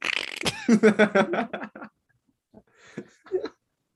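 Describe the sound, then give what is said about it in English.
A voice blows a buzzy, sputtering imitation of a fart for nearly two seconds, pulsing rapidly, then after a short pause adds a few quieter, shorter splutters and puffs. “Nah, it's when people can hear your farts, bro.”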